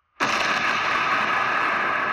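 An explosion sound effect bursts in abruptly after a brief silence, then sustains as a loud, dense roar that holds steady without fading. No voices are heard.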